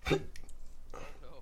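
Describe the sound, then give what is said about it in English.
One abrupt hiccup pops out right at the start, followed by soft, indistinct voices murmuring in the background. “Oh, no. The hiccups.”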